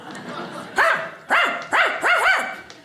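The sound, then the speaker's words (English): A man's voice imitates a dog barking, four short, loud woof-like yelps close to the mic, the last two coming in quick succession. “Like we had a show where a dog could talk to humans.”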